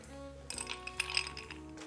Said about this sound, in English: So I'm gonna mix up a rum and Coke. It's a real simple recipe, or simple cocktail. It's another type of highball, by the way. Just put some ice in the glass.